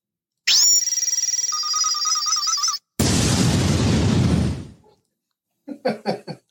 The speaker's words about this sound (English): That is a Star Wars plasma cannon